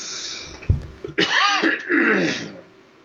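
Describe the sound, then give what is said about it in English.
A harsh cough bursts out after a short thump, followed by a rasping, throaty clearing sound that trails off into quiet. “I got a cough.”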